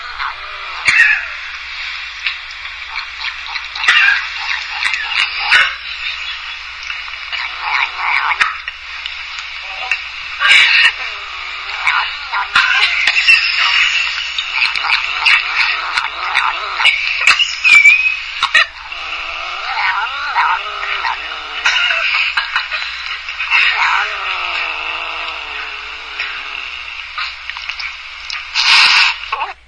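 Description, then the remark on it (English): A cat licks sour cream off a spoon, with rapid wet smacking and clicking that runs steadily for half a minute and sometimes sounds like a murmured "num num." “That's a cat. He was saying num num num. He was licking sour cream off a spoon.”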